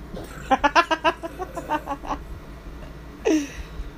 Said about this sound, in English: What? That bird.